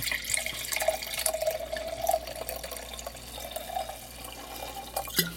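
Shiraz wine from an already opened bottle pours steadily into a glass for about five seconds, a gurgling trickle with a faint rising tone as it fills, with no voices.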